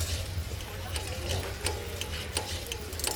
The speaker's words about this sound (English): I could hear the brass stick hum and whirl. The webbed foot at the top slid aside, and a thin, extendable rod shot out.